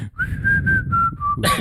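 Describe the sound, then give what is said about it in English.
Someone whistles a short, breathy run of steady notes that dip slightly in pitch near the end, fairly loud, followed by a brief rush of noisy breath. “And it's just, oh, I can't whistle.”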